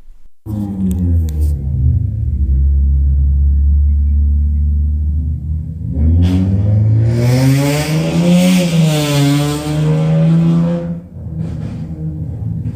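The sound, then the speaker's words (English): A loud, raspy modified car exhaust idles with a deep rumble, then revs hard and rises into a roaring pass before dropping off, with no voices. “Hey man, you know, I got the fart gang on my car.”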